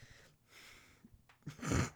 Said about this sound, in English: Can you hear me breathing? heavily breathing.